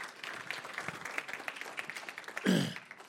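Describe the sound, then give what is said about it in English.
A church audience on a Sunday morning gives the Lord a hand clap in a steady, dense patter of many hands clapping, with a louder low burst and swell near the end before it starts to taper off. “Would y'all give the Lord a hand clap this morning?”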